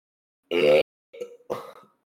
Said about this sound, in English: For anyone who listened to the original episodes, you'll understand that that was a thing I made sure to burp into the mic at least once an episode back then.